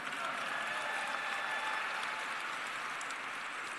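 A crowd applauds steadily, a dense, continuous wash of clapping that stays even in loudness for the full few seconds, with faint voices mixed in.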